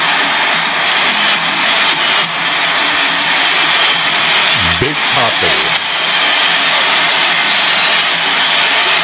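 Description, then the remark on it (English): A baseball stadium crowd at Fenway roars in a loud, unbroken wash of noise after Ortiz hits the ball to deep right field, with a brief spoken voice cutting through partway. “Listen to that crowd at Fenway.”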